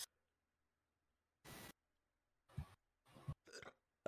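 Three or four short, raspy burps from a person who has been drinking beer, coming in quick succession after a brief hiss of noise, with quiet gaps between them and no talking.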